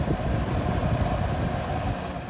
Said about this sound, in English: At the end of the video, a helicopter descends on the protesters.